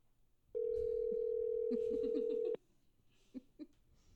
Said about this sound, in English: Three ringy dingies. It takes them a while to get to the phone. So I'm calling her cell.